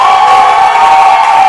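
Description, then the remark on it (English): An audience at a morning church service celebrating their pastor's birthday shouts and cheers together in a loud, sustained roar of many voices, holding steady without a break for the whole moment. “I was expecting a louder shout and a clap.”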